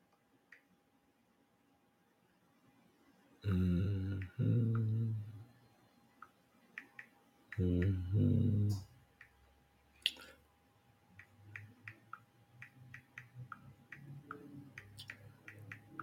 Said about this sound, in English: Y'all hear me typing?